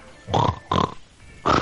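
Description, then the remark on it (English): A voice imitates a pot-bellied pig, making three loud grunting oinks in an uneven rhythm with short pauses between them, and no other talking. “Hey, pot belly, pig lady.”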